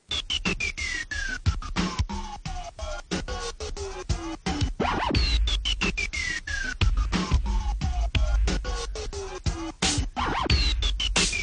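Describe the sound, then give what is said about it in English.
A hip-hop intro built on turntable scratches and punchy, steady drum hits, with long descending pitch sweeps gliding down over a deep bass line. Purely instrumental, with no voices. “Here's a clip of my favorite track off …,”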